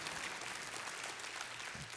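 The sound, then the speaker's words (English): A church audience claps their hands in a dull, muffled wash of applause that holds steady and unenthusiastic for about two seconds, with no voices over it. “That was a little dull hand clap, but I understand.”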